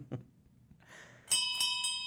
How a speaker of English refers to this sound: And that was the bartender ringing the bell, signaling its last call for drinks. So since the pub's going to be closing soon,